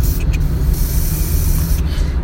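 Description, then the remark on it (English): An aerosol can sprays inside a car in one long, steady, loud hiss, with a low rumbling background. A brief break in the hiss comes near the start. “Spray it all through the car.”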